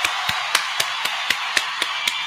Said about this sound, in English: And go ahead and continue to get the round of applause together. Also for 583 Expressions.